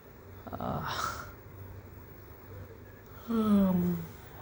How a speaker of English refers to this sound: I'm yawning in the podcast.